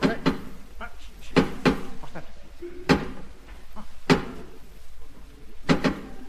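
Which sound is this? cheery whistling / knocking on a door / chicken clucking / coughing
knocking on a door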